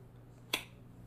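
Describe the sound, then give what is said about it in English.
A single sharp finger snap cracks out once, a bright click with a quick decay, standing alone over a low, steady background hum. “When you snap your fingers, there's like a click to it.”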